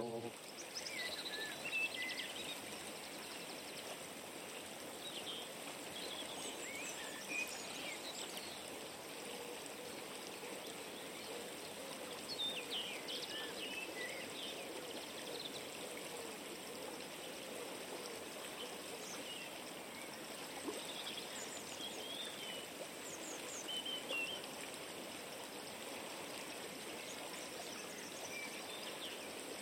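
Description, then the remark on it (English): A steady, gentle rush of flowing water from a chalk stream, the Sidling River in Dorset, at the site of a former trout farm, with faint insect chirps and buzzes scattered over it, continuous with no voices. “Recently I visited the Watershed, which lies on the site of a former trout farm on the Sidling River, which is a wonderful chalk stream here in Dorset.”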